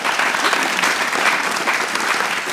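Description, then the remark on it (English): A church audience at a Sunday morning service breaks into steady applause, dense overlapping claps from many hands at an even, sustained loudness for a couple of seconds. “I support all of that clapping.”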